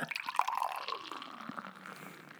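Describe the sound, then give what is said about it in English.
Downtown Brown beer pours into a glass, forming a healthy head of foam: a steady gurgling splash with a bright ringing tone as it fills, running for a couple of seconds with no one speaking. “Don't make any jokes about giving good head, but I do notice there's a pretty healthy head of foam on that.”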